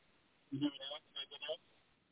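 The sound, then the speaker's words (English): A faint, muffled voice speaks a few words from a distance, its sound thin and band-limited as if coming through a phone line, with brief pauses between short bursts. “I don't know if you're close enough to the... to your phone or the mic or something, but I can't really hear you that well.”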